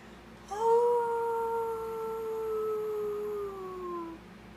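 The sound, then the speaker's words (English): A person lets out a single long, sustained wolf-like howl, starting abruptly and holding a steady pitch for about four seconds before sliding slightly downward as it fades, clear. “who likes to howl”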